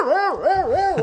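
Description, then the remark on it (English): A person imitates a dog barking: four quick, fairly loud voiced yaps in a steady rhythm, each rising and falling in pitch, with no other talking. “I can't believe we mentioned dogs and you didn't do your trademark.”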